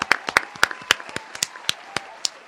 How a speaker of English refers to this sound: And she, I will say, I'm going to give her a round of applause because she's sober now.